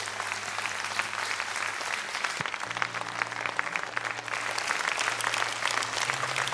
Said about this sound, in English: All right, can we now just give all of our baptizees and their families a round of applause? Yeah, lift it up.